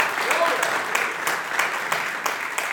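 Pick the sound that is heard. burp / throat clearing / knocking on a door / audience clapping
audience clapping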